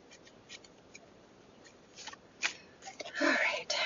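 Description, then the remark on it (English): Quiet standard shuffling of a deck of tarot cards: scattered soft papery flicks and taps that build into a denser, louder riffling burst near the end. “So I'm just shuffling it, just a standard shuffle, nothing exciting.”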